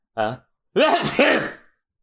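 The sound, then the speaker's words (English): A voice fakes a sneeze: a short voiced intake, a brief pause, then a longer loud, breathy burst that wavers in pitch before trailing off. No other talking. “What a phony sneeze.”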